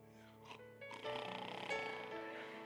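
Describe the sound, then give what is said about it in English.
A person imitates snoring with a rough, rattling, voiced growl that starts with breathy puffs and swells into one long, loud snore. “I'm just kidding. She doesn't snore.”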